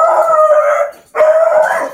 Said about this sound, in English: Did you push the button on the dog is what happened, I think. That was the wrong button.